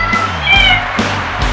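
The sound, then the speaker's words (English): Bucky, the cat starring in the show Life with Bucky at New York's Stranded Theater on Broadway, gives a short series of fairly loud meows over a steady low rumble of background noise. “And now the star of Life with Bucky, Her Royal Buckiness, the world's most amazing cat, Bucky.”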